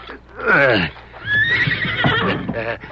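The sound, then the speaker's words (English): A horse having its hoof fixed by a blacksmith whinnies loudly, with a short descending neigh followed by a longer, quavering whinny that trails off near the end. “There ain't nobody but me strong enough to hold a horse so as he won't move, neither.”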